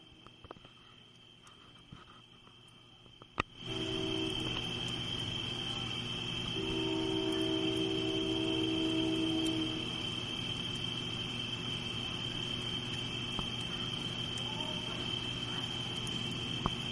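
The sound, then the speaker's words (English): A dense wall of insects chirping in trees surges in after a quiet opening, holding a loud, shrill, unbroken drone, while low steady train-horn tones sound twice beneath it. “Now, I think there's like a whole wall of insects in the trees.”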